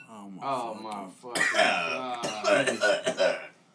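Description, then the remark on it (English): A coughing fit: a strained, voiced throat sound gives way to a run of harsh, rasping coughs in quick, uneven bursts, loud. “You just gonna be coughing and dying, bro.”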